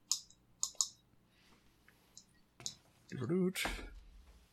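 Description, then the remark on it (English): A d20 die clatters across a hard table in a quick series of sharp clicks, followed by a brief vocal murmur and a louder knock near the end. “All right, this dice is being very kind to me tonight.”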